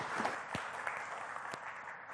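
An audience applauding, a dense, steady patter of many hands clapping at once, fairly soft and distant-sounding, with no talking over it.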